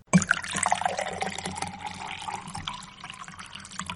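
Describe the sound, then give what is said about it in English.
Water pours steadily into a glass for a few seconds, a continuous splashing trickle whose pitch rises slightly as the glass fills. No one speaks. “Oh, well, I hate to disappoint you, but I'm only having water right now.”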